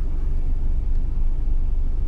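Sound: car interior noise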